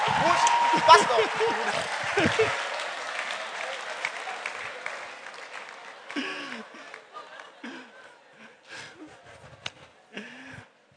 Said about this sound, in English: if you still want to clap, it's still okay.